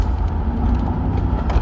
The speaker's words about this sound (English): Just driving over the bridge.